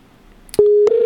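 A steady, continuous telephone dial tone, heard while dialing a backup number to reach a caller, hums in clearly about halfway through and holds at an even pitch to the end, briefly interrupted by a soft click along the way.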